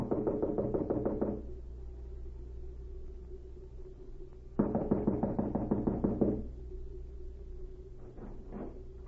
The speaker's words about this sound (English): An hour later, the spy Cavalier knocked at the door of a small cottage and was admitted.